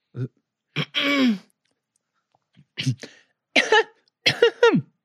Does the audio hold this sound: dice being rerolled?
no